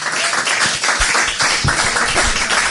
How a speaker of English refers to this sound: Will you give a nice big round of applause to former Kilkenny goalkeeper, Mr. David Herity of Dunamagan?